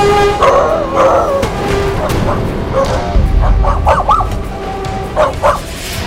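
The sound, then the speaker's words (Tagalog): A dog near a railway in Manila barks and yelps excitedly as a train approaches, in a quick, irregular series of sharp calls, some rising into whiny yips, over a steady low background rumble. “Ang ilan kasi sa mga ito, lalo na ang mga aso, nagiging aligaga tuwing naririnig ang busina ng tren.”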